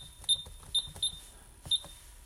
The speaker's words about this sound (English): All right, turn off the alarm.